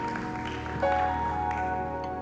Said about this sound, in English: Come on, put your hands together one more time and give God a hand clap of praise.